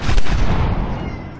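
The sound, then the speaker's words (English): A single loud, sharp crack like a gunshot bursts out, then rolls away in a rumbling, echoing tail that fades over about a second. No voices. “A loud, echoing crack broke the sleepy silence like a gunshot.”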